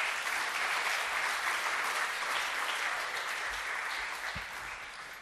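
A crowd applauds steadily, a dense wash of clapping that holds loud and even for several seconds before easing slightly at the end, with no voices standing out.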